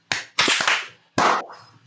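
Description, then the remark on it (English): A handful of sharp, loud hand claps for a clap check, in an uneven rhythm, each a bright percussive crack with a short ringing tail, with no talking. “No, clap check.”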